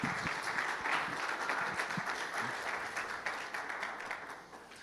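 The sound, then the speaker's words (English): An audience at Calvary church applauds to the Lord during a bilingual Spanish and English service, a dense wash of many hands clapping at once that stays loud and then tapers slightly toward the end, with no one speaking over it. “Give an applause to the Lord.”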